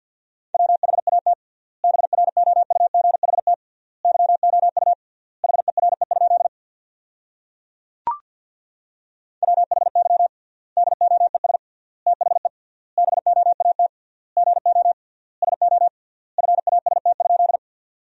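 Rapid Morse code at 50 words per minute with triple word spacing, sending sentences built from the 500 most common words, in a steady mid-pitched tone, short bursts of fast dots and dashes separated by wide gaps, with a single sharp click partway through and no talking.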